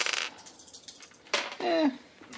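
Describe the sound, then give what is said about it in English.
Two dice, rolled for initiative in a game, clatter and rattle across a hard tabletop in a couple of short, bright bursts, with a brief murmur of a voice in between. “All right, so now let's roll for initiative.”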